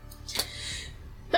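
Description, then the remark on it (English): A woman sneezes once, a short, sharp burst of breathy noise, followed by quiet and another brief noisy sound at the very end. “Bless you. Bless her.”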